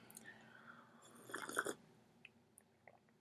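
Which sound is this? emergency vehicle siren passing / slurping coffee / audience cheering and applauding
slurping coffee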